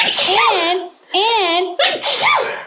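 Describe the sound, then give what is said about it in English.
Three loud sneezes in quick succession, each a breathy burst with a strong voiced, wavering tone, separated by brief pauses. “Excuse me. Bless you.”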